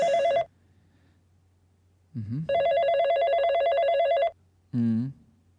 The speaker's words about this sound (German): Ja, hast du Freizeichen? Es klingelt, ja.